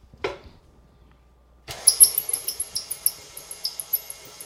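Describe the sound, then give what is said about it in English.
An electric mixer, mixing an egg and vanilla in a bowl, switches on with a short burst, then runs with a steady motor whir while a high, rhythmic squeak repeats about every quarter second; it squeaks when first turned on. “Wish my mixer didn't squeak.”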